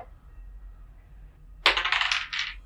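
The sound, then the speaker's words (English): Dice roll across a table during a tabletop role-playing game, landing a natural 1, after a quiet moment: a sudden clatter of several quick rattling bounces that settle within about a second. No one speaks. “That's a nat 1. Okay. Yeah. So, again. Shitty dice.”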